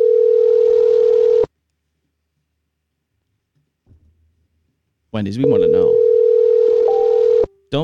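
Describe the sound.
A phone ringback tone on an outgoing call to a Wendy's restaurant: a steady, loud electronic tone, then a long silence, then the tone again while someone talks over it.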